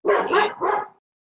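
A dog barks three times in quick succession, loud, in the background, with a short gap before silence; no one speaks over it.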